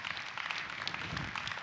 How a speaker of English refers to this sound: Hallelujah. Give him a hand clap. Thank you, Jesus.